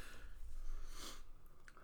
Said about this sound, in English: I feel bad for everyone who's just listening to me chew right now when they're trying to watch the fucking movie.